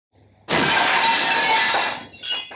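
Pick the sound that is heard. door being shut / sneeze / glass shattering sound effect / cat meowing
glass shattering sound effect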